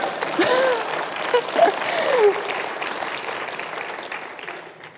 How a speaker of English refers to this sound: Like, y'all are supposed to clap at this point.